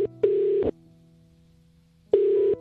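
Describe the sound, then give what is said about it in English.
A telephone call to a boy's grandmother rings out in the earpiece, a steady electronic tone in two bursts, a short pulse and a longer one, then a pause before the ring repeats. No one speaks. “His grandmother is Evelyn, and we'll phone her now.”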